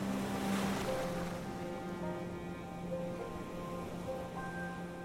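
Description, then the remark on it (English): Steady washing roar of sea surf, a continuous broad hiss without distinct breaking crashes, with a faint low mechanical hum running underneath. No voices. “Invited to a stag do in Brighton later in the year, he ended up alone on the beach in tears, screaming at the sea.”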